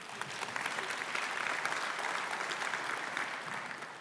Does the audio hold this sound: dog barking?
no